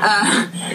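dog whimpering

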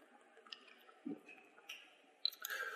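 speaker drinking water

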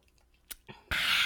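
sipping champagne

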